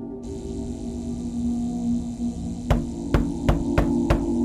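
Five sharp, loud knocks on a door come in a quick, slightly uneven burst over a steady low electrical hum, with no one talking.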